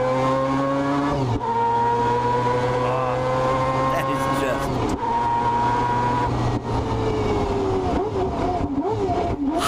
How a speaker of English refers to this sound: That makes me tingle. That's really, and this is, that's not the best sound of it. When you hear that car on the track and it's screaming up to, you know, Lord knows how many thousands of RPMs, it's just, it's Oh, it's so good.